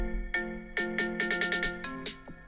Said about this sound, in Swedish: Men det här är ringsignaler. Ja, ja, ja. Du vill inte vakna till det här.